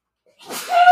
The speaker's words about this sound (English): No, bless you. Big sneeze. No, of course. I'm so sorry. That's how I sneeze, people. That wasn't a bit. I'm a cartoon character.